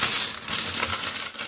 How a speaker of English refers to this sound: So we're gonna dump out our pieces.